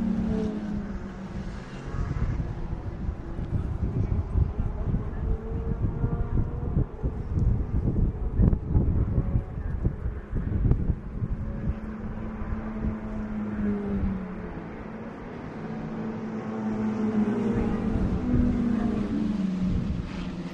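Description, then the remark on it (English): Wind blows steadily outdoors beside a Roadtrek camper van for the whole stretch, a low, heavy rumbling roar that swells and buffets in gusts, with no voices over it. “That wind is kicking up a bit.”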